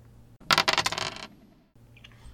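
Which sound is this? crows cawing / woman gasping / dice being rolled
dice being rolled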